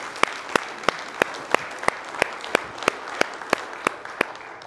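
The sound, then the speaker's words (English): An audience applauds for the Lord after a prayer, a dense wash of clapping with a steady, evenly spaced beat of sharp claps cutting through about three times a second. It is fairly loud, with no voices. “Come on, give the Lord a hand clap, please.”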